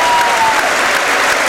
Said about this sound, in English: Wow, Paul Mullen. Yeah. He's been taking a battering. He doesn't care. He applauds the fans who give him a standing ovation.